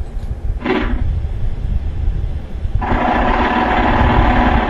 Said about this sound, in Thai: แล้วนี่คือเสียงมดราชินีนะ